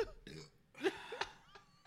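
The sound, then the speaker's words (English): A run of short, throaty burps after chugging a beer, four or five in quick uneven succession, with the middle one loudest and no talking in between. “I can only burp now.”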